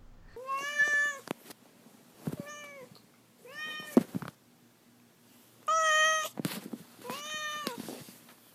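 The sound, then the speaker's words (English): Duarte, a pet cat, meows four times in close succession, with short pauses between. The calls are clear, a couple drawn out and rising, with a few soft clicks and no talking. “Okay, now we will move on to Duarte's Corner, where my cat Duarte will share his opinions about the books.”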